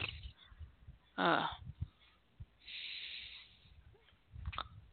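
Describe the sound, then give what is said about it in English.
Heavy, snorting breaths: a loud rasping inhale near the start, a longer airy exhale in the middle, then softer snuffles toward the end, with no talking. “I know, but the way you were breathing, it's not like you were sleeping.”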